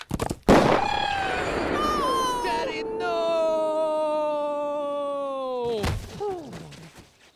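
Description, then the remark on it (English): A sharp, loud gunshot from a man's own gun, brought from home, cracks out, followed by a long, sustained wailing tone that slowly sinks in pitch, ending in a rougher burst of noise. “Shit, he brought his own gun from home.”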